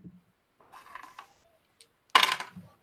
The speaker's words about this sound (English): I dropped my dice.